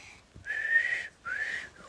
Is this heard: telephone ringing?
no